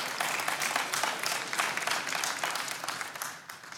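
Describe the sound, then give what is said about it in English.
A crowd applauds steadily, a dense wash of many hands clapping at a fairly even level for several seconds before it begins to taper off near the end. “Yeah, it's worth clapping for.”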